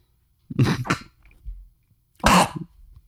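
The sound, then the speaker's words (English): A quick double cough, a short pause, then one more harsh cough, all fairly loud with no talking around them. “I don't know if my dick gets smaller from the cough or the pill.”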